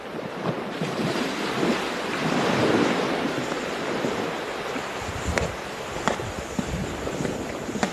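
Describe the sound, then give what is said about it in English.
Loud, continuous rush of sea waves surging and roaring as the sea parts for Moses and his people to pass, with wind buffeting and a few sharp splashing crests breaking through near the end; no voices. “God parted the sea and let Moses and his people pass.”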